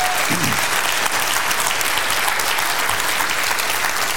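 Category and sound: crowd, round of applause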